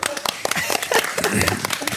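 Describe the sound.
A burst of audience applause, many hands clapping in a dense, steady patter for a couple of seconds, with some voices mixed in underneath.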